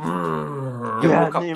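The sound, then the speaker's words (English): A person vocally imitates the roar of the character Nameless: a sustained, loud, growling tone with strong harmonics, rising into a rougher, more forceful burst near the end. “And Nameless gives a roar.”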